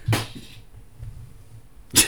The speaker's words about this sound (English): I have some sunglasses sitting on my desk, and I just knocked them over. I'm sorry.